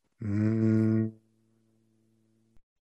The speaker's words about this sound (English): Now, the second part is the palm hum. So we can do this together. Rub your hands together. Breathe in through the nose. When you exhale, make a humming sound.